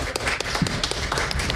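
An audience stamps their feet to make an elephant stamp noise, a dense, irregular clatter of thuds and taps, loud and continuous for the whole moment with no clear shared rhythm.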